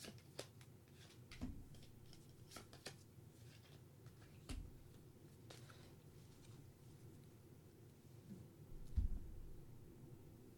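Soft papery shuffling with scattered light flicks and taps as tarot cards are shuffled and drawn, heard alone with a slightly louder rustle near the end.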